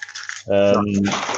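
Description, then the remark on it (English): A short, light metallic jingle of keys on a ring holding a thin, lightweight, spring-open nail clipper, crisp, then a voice starts talking over the fading clinks. “So my keys, see, doesn't weigh anything, nice and thin, doesn't have a blade, and then it springs open, nail clipper.”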